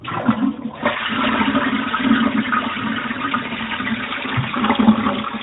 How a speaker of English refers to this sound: Is that the toilet flushing? Yes, it was. Is that a Ferguson? Yeah, it's a Ferguson, you say.